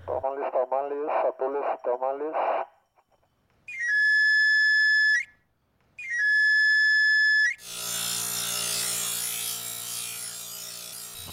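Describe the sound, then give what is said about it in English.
A tamale vendor's steam cart whistle gives two long, steady, shrill blasts with a brief pause between them. A voice speaks briefly beforehand, and a broad, continuous hiss over a low hum follows. “Everyone knows the sound of the tamalero.”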